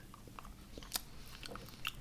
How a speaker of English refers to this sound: Chocolate coins are great. Aren't they just the greatest thing? Especially when they're not... Almost as great as hearing you chew.